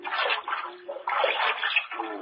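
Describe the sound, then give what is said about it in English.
Cold water pours steadily from a tap into a basin, a splashy rush that briefly eases near the middle before surging again; no voices. “This cold water will help that head.”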